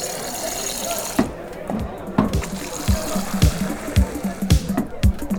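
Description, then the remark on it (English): Pints of beer being pulled from a tap into a glass in a pub, a steady liquid rush with gurgling and faint clinks, set against a busy murmur of voices in the background. “I can hear the pints being pulled right now.”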